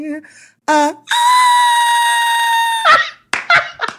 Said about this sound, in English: Well, yes, that whistle tone attempt.